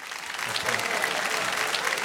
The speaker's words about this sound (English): You're supposed to go, you're supposed to clap. Thank you. Because she's here. So if I were you, I'd clap.